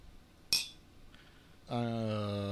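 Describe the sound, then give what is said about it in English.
A single sharp, bright clink of glasses touching in a toast with Canadian Club whiskey, followed a moment later by a sustained vocal groan. “We're going to cheers on this one.”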